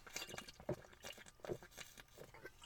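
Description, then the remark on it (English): Sipping and gulping of a Coca-Cola, with several wet swallows and fizzy, crackly bursts in an uneven rhythm, fairly quiet and with no talking. “Let's have another sip of this Coca-Cola.”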